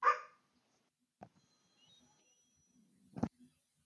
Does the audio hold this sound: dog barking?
yes